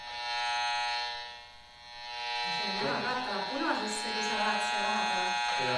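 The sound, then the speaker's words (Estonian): A steady, harmonic-rich electronic buzz from a low-frequency meter turning its reading into sound, holding fairly loud throughout; partway in, a person starts talking over the continuing drone. “Ma panenkin nüüd seda madasagetusse mõõtja tööle, mis teeb selle heliks.”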